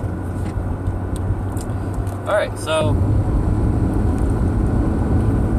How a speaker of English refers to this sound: Got a little squeal there. This car, it's hit or miss, but it sometimes has some good power.